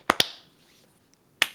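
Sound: hand clap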